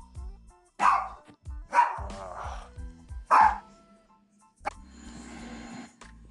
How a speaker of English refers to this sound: All right, so sorry for there was a little weird mess up. My dog in the background. I apologize for that.